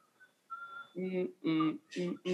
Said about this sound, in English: I guarantee you've heard it. I always hear people whistling that part, but I never knew what the song was.